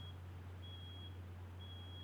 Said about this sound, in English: Is that beeping coming from your end? No, the beeping's outside. No. There's like a dump truck here or something. Somebody's backing up.